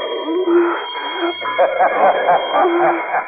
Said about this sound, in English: A bell rings every time you move. I know exactly where you are.